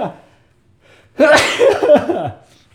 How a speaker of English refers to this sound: oh, I'm going to sneeze.